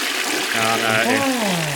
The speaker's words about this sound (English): Give it a flush.